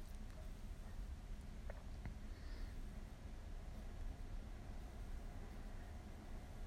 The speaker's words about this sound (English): Do you hear the train?